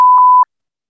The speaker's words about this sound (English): No, we can't include that though. I want to beep it.